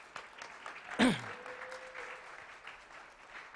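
An audience breaks into applause, a dense, steady patter of many hands clapping, with one sharp louder burst early on and a brief thin whistle-like tone over the clapping.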